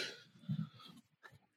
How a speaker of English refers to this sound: Okay, I'm just loving the cat noises.